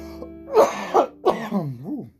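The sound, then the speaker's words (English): Four harsh, chesty coughs in quick succession, fairly loud, trailing off into a low, wavering throaty groan. “Coughing up a lung.”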